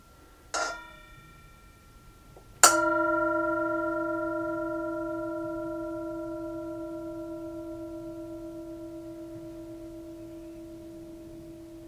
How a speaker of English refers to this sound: And as always, we invite you to enjoy the sound of the Tibetan singing bowl, to enjoy the sound of the bell.